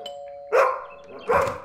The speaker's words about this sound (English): For feck's sake, Benji, will you stop barking? It's only Kat.